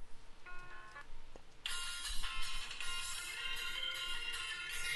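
A phone ringtone plays: a few soft, thin electronic tones at first, then a loud, bright burst of busy music that carries on steadily to the end, with no talking.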